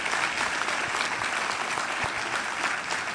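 Steady applause from an audience fills the whole stretch, a dense, even patter of many hands clapping at once with no pauses, fairly loud.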